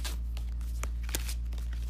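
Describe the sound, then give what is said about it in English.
Tarot cards being shuffled before pulling a single card: soft papery riffling and brushing with a few sharper slaps, over a steady low hum, with no one talking. “I'm just gonna pull one tarot card today and see what we get and see if it resonates with anyone.”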